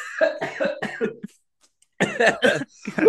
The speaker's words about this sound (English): I just coughed so hard it gave me a headache.